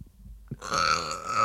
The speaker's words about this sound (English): Excuse me. I cannot get these fucking burps out.